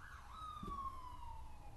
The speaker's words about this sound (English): Okay. Ambulance.